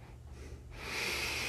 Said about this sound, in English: And the breathing gives the energy. It wakes you up.